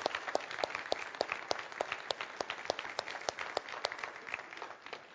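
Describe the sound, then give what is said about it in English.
A church audience applauds steadily for its teachers, youth sponsors and leaders, many overlapping claps forming a dense, sustained wash with sharper individual claps popping out, moderately loud, with no talking. “We have great leadership in our church, and I would really appreciate if you would let them know through a round of applause just how much you appreciate the work that they do, because they do a great job.”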